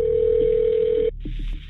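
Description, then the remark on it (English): A single steady telephone ring tone hums down a narrow phone line for about a second, then cuts off, leaving faint crackly line noise and a hint of muffled voice. “And in fact, there's a call, which we have here.”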